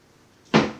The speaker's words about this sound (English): It was a matter of if Ricky then will knock rather hard on the door or not to try and wake Zataz. He'll knock a little bit harder the second time.